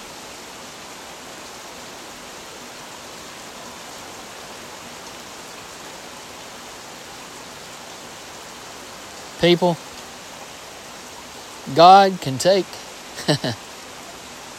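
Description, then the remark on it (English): Steady rain hisses evenly throughout, a dense, constant wash of falling drops. Near the end a man speaks a few brief phrases over the downpour. “He could take this rain and He could make it go back up into the heavens if He wanted to.”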